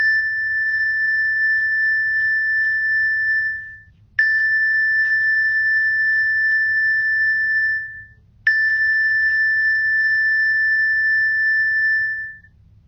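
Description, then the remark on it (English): Three strikes of a meditation bell, evenly spaced about four seconds apart, each a clear high ringing tone that sustains and fades before the next, over a faint low hum. “Just resting your attention right there and opening to the sounds of the bells.”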